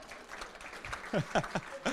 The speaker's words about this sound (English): I think she deserves a round of applause for getting that far.